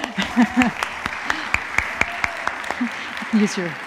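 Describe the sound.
A crowd claps steadily in a dense wash of applause welcoming a newly introduced director of youth and family, with a few sharper individual claps standing out and scattered voices calling out or cheering over it.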